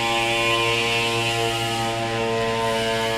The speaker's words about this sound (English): Oh, is it a moped? Shit. Is it a moped? It's a moped. It's a high schooler, because I passed him. Annoying moped sounds brought to you by the Oddcast Network.